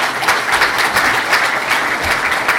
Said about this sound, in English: You can applaud because he represents the 28 people.